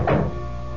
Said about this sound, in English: Suddenly, I heard this rapping at the door.